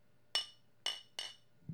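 Three bright, ringing clinks of drinking glasses tapped together in a cheers, done to imitate a boxing bell, the first two spaced apart and the last following quickly, each with a short shimmering decay.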